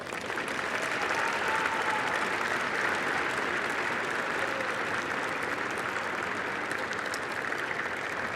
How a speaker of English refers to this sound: And I think it would be appropriate for the graduates to express their love and gratitude for their families with a round of applause.